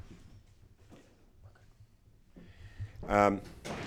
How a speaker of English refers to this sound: Just want to close that door out.